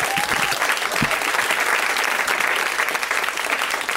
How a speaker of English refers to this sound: Thank you for coming back. A round of applause for all these people.